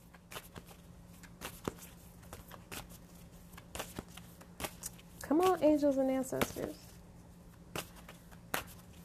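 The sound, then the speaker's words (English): A deck of oracle cards is shuffled to draw cards for a spread, producing scattered, irregular papery snaps and riffles throughout, with a short spoken phrase breaking in about midway. “When I shuffle and it takes this long for cards to come out, especially since I am not the best shuffler in the world, I pay attention to that too.”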